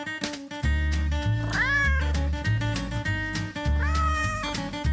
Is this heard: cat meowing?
yes